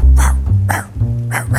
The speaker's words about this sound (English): And I was walking down the street, New York City, late at night, rain pouring down. I'd hear dogs barking in the alley.